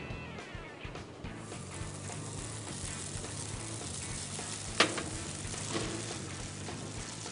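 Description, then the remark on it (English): Steady, soft sizzling of pancake batter cooking in hot olive oil, a continuous hiss with faint crackles and one brief sharper pop partway through, no voices. “Olive oil and the pancake batter.”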